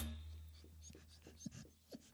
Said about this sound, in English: Dog's in the room. The dog just came in. He's got some things to say.